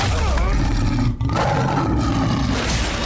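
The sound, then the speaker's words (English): A loud tiger roar rumbles for about three seconds, deep and rough, with a brief catch partway through before the growl carries on to the end. “Tiger.”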